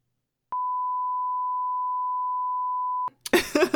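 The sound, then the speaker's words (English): A single loud, steady censor bleep holds one pure pitch for about two and a half seconds, then cuts off abruptly as someone starts talking. “Cut, beep that.”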